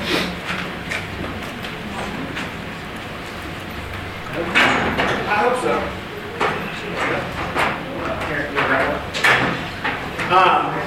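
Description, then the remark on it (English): Several wooden scrapes and knocks of three chairs being grabbed and shifted around, in irregular bursts, with a brief spoken remark among the clatter. “But you guys remember the three chairs, okay? Let me grab some real quick.”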